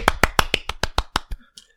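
One person claps alone for the NHS, about nine quick, evenly spaced sharp claps in a steady rhythm, then a short pause and one last faint clap. No one speaks.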